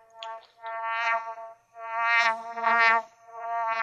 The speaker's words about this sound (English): Ah, the bees. Oh, she does sound like bees.